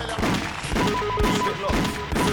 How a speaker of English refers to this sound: They're fucking gunshots. Are you fucking nuts? Really fucking outside.